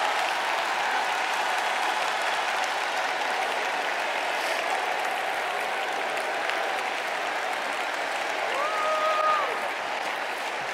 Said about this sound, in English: Why don't you take a praise break? Clap your hands and worship him for a solid minute.